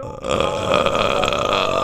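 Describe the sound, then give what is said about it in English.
A single long, loud burp after drinking soda rumbles on for nearly two seconds, deep and gravelly with a steady buzzing tone, with no talking over it. “Did you get yourself a soda? Another soda?”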